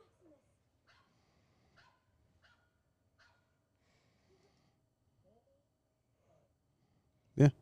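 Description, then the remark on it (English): A puppy shown with Lizzie McGuire lets out a string of soft, high yips and whimpers spaced a second or so apart, then gives one sudden loud bark at the very end. “With the puppy?”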